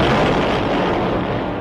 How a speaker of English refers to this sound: Drop that explosion.